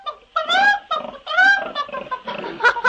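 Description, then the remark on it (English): A real live pig oinks and squeals in a rapid string of loud, nasal grunts, with a few shorter clucking squawks from a live chicken mixed in toward the end; no one speaks. “You've got the makings all right, but I don't think I could eat a real live pig and a chicken.”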